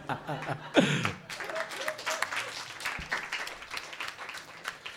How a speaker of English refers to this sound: But you don't get a Viking clap for that one. Just a regular clap.